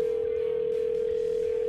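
A steady, continuous telephone dial tone hums at an even level, unbroken for the whole moment, with no voices over it, as the radio station New Country 103.1 places a call to a listener.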